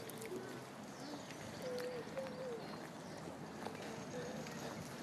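Scattered chirps and calls from many birds drift through steady outdoor background noise, faint, with a few brief tonal calls standing out in the middle.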